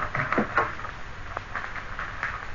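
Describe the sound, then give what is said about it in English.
A servant's door is opened with a few soft clicks and a brief rattle of the latch, then a quiet shuffle amid otherwise hushed surroundings. “Just open the servant's door there.”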